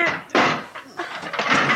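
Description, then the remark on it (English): A trap door at the top of a ladder, leading up onto a roof, is hauled open, a series of rough scraping, rattling bursts with a heavier thump near the start, fairly loud and with no voices. “Now, where's the trap door? Oh, here it is.”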